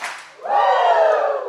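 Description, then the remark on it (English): An audience gives two claps, then breaks into a loud, sustained Ric Flair-style group "woooo" that fills the rest of the moment. “I'm going to need two claps and a Ric Flair.”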